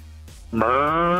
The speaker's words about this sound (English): Oh, this cow has wandered into my living room again.